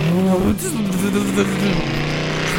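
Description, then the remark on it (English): A voice imitates a car engine, humming a steady revving drone that rises and dips in pitch for a couple of seconds, fairly loud, with no actual words. “I'm driving.”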